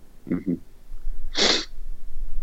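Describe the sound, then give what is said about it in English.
A loud nasal sniff, a single sharp breathy rush of air lasting about a third of a second, preceded by two short, low throaty bursts. “You know what we should consider is cough buttons and mute buttons, because I've coughed and you just gave it a big sniff.”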